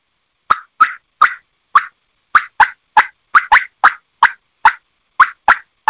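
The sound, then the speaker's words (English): A wild turkey gives a run of about fifteen short, sharp, high-pitched pips in an uneven rhythm, each one crisp and loud, with silence between calls and no voices. “99 times out of 100, I don't know if I've ever heard any of them do it, and they're going to be that high-pitched pipping.”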